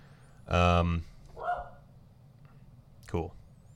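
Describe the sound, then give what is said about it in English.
A dog barks: one loud, drawn-out bark, then a softer short bark, and after a pause a final sharp bark, with quiet background noise in between. “We're gonna have a brief bark break while the dog freaking yells.”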